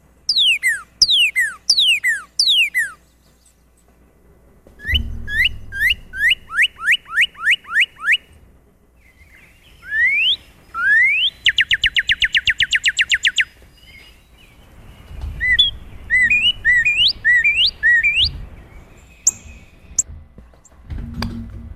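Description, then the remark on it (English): A northern cardinal sings a series of loud, clear whistled phrases, each a quick run of downslurred notes, with short pauses between phrases. There is a faint low rumble underneath and no talking. “Okay, so that's the northern cardinal.”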